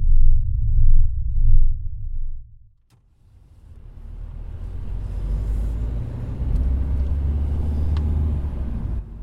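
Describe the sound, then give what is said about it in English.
Low, steady engine rumble of a car on the road, briefly dropping away to near silence before returning as a fuller, continuous wash of road and traffic noise. “With today's traffic, we should be there in 15 to 20 minutes.”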